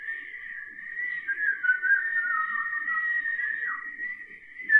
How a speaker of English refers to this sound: Hey, do you want to know what good audio is for podcasting? Just whistling into the mic for several seconds.